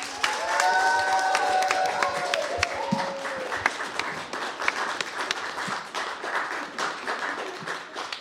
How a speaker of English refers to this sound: But can everyone give a big round of applause once again to the two teams that competed tonight?